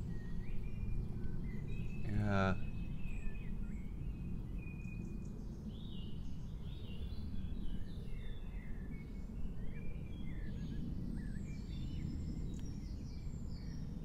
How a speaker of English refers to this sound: I think the birds are saying it better than either of us can, aren't they? Yeah, they are really, like. They sing that fucking song.